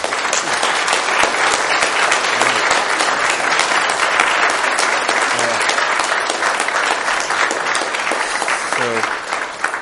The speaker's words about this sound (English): Thank you for this. It's extraordinary. We applaud.